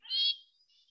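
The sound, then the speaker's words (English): A cat lets out a short, high-pitched, squeaky meow, which quickly tapers into a faint thin trailing tone. No one speaks. “If you guys can see how cute this kitty is, that makes this funny sound.”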